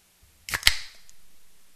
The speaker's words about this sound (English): That was louder than I was expecting it to be. I'm very sorry. Normally, I open the can before the show starts, and this time I forgot.